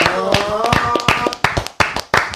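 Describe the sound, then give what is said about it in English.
Brief, scattered applause: sharp hand claps land in an irregular burst, loud and crisp, with a voice sounding faintly underneath early on before the last few claps stand alone. “I got the applause.”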